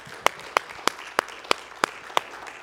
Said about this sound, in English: Let's give him one more hand clap, please, together.